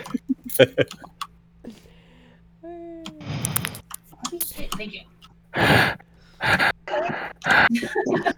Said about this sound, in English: You got very heavy breathing on your mic there,